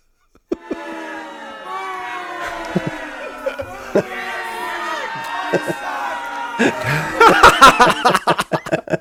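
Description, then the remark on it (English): A boo drop sound effect: a crowd lets out a long, sustained chorus of booing, many overlapping voices droning together, which swells near the end into louder, choppy bursts of people yelling "you suck". “The people yelling, you suck, in the boo drop.”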